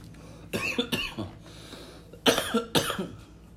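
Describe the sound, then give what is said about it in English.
Two clusters of sharp coughs, a pair early on and another pair a moment later, each burst harsh and loud against a quiet background. “No, I just coughed.”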